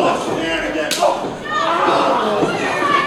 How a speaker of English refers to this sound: Oh, and a slam. But Powers is slammed.